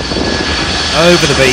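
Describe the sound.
The loud jet engines of a 747-400 coming in very low at St. Martin Airport roar in breezy conditions, a broad, steady rumble with a rising whine as they power up again, while a man speaks briefly over the noise.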